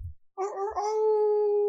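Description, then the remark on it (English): A person imitates a wolf howl: one long, loud vocal howl that rises briefly and then holds a steady, sustained pitch until the end. “howling at the full moon here on the precipice of the waterfall of goofs.”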